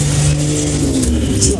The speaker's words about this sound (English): I think it was a bit late to let that car go close by here.